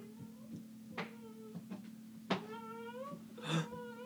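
A cat named Kitty meows several times in a row, with short drawn-out cries rising and falling in pitch over a steady low background hum.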